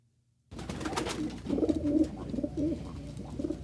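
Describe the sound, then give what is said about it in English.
A pigeon cooing sound effect: low, throaty warbles, several rolling calls in close succession, over a steady background hiss with no talking. “I hear that carrier pigeon, man.”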